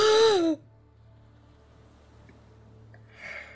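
A loud, dramatic full gasp rings out at the start, a sharp voiced intake of breath lasting half a second, followed by quiet hum and a softer breathy exhale near the end.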